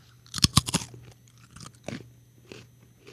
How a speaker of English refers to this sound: Is it a Wheat Thin? Wow, that's really good. Yeah, the softer crunch makes sense. Good guess. Yeah, that was a great guess. It didn't have the sound of a chip.